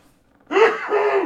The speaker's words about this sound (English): Gesundheit. Good thing the microphones aren't working today. I know, right? That would have been really loud.